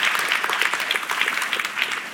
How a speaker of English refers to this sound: And can we just one more time, I just want one more hand of applause for this. You. You're the reason this happens. It's because of you. So give yourselves a hand.